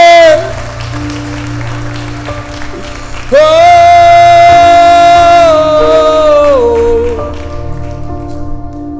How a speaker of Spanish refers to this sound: ¡Aplaude!